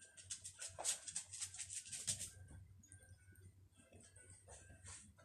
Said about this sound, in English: Now, can you please be quiet for my podcast? I'm sorry, my dog is being quite of an ass toward me.